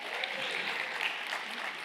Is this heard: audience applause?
yes